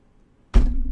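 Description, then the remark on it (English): A single heavy bang on a front door breaks a short silence, loud, with a deep booming thud that lingers and rings out for a moment afterward. “There was a bang on the front door.”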